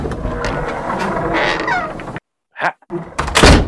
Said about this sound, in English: I think I'm going to start, though, by knocking on this door and seeing if this person is here or even available. So let's try it out.